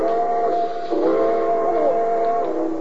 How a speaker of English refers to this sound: Train number 31, the cinder bucket, now leaving on track 3. Board!